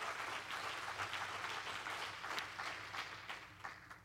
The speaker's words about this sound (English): If you agree with that, would you clap your hands as you're behind Jesus?